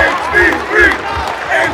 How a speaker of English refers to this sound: He's got the guys yelling at him. The crowd's clapping.